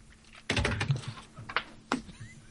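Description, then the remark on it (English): Irregular clacking of keys on a computer keyboard: a quick flurry of sharp taps followed by a couple of isolated keystrokes, with no voices present. “You going to drop your keyboard?”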